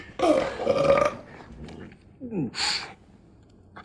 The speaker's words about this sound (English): This guy showed up. I don't know who he is, but he had the burps, and here's why.